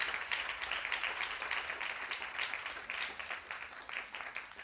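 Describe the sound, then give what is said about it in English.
A crowd claps steadily for people about to be baptized, a dense wash of many hands applauding at once, fairly loud and even for several seconds with no voices standing out. “Can we clap our hands right now for everyone that's going to be getting baptized in just a moment?”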